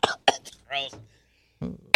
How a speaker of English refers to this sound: Coughed his lung up. Popped my lung out here.